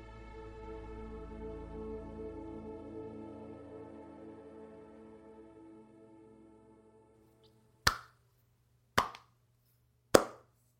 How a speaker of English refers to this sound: Slow clap. Slow golf clap.